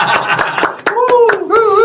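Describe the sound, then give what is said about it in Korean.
A small group claps hands on the Gaesujak Classic Jaetech show to celebrate finishing the spending part of a financial planning series, a loose, uneven burst of sharp slaps lasting about two seconds, with a voice calling out over the second half. “재무설계 출테크 완료 기념으로 박수 한 번씩 갑시다.”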